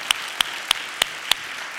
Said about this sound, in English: Absolutely, put your hands together for that.